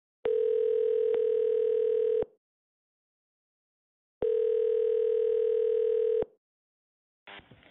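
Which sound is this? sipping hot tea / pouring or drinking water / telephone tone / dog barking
telephone tone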